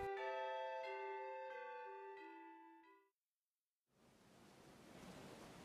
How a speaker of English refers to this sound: The crimson sun sets over a vast expanse of ocean waves.